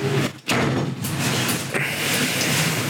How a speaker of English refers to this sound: Close the door.